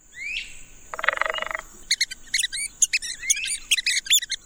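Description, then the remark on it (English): Red-cockaded woodpecker calls: a brief rising whistle, then a harsh buzzy rattle, followed by a rapid flurry of sharp, squeaky chirps, fairly loud, with no talking. “The red-cockaded woodpecker is a year-round resident of mature southern pine forest in the United States, but now it's listed as endangered.”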